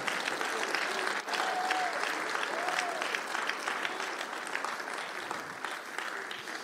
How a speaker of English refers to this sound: If you believe that right now, stand to your feet and give him the great round of applause and say, God, I love you.